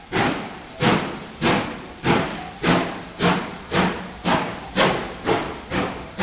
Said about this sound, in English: I have to say that I did scour the free Creative Commons license archive of sound recordings, and I found one of a steam train leaving a station. So I'm going to play that.